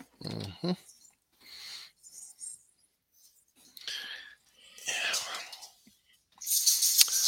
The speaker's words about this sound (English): Okay, so excited. You're going to go somewhere? You going to go for a ride? All right. So excited to go for a ride. Yeah. No, he's so excited. Talking to the dog.